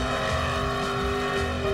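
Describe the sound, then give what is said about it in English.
Loud, sustained engine roar with steady harmonic drone of a Ford and a Chevy car revving hard against each other in a tug of war, holding a constant high pitch with no speech. “That was a Ford versus Chevy battle.”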